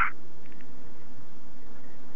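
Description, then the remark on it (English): A noisy, band-limited telephone line hisses steadily, with a brief burst at the start and a few faint chirping blips, sounding thin, garbled and low quality with no clear speech. “Call me back on a less shitty phone.”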